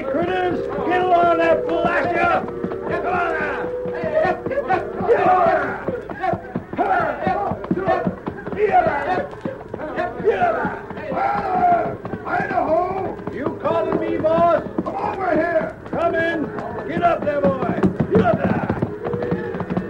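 A trail crew gets a reluctant cattle herd underway shortly after sunrise on a drive approaching Big Horn County: overlapping shouts and whoops from riders over a steady clatter of hooves and milling animals, loud and busy throughout.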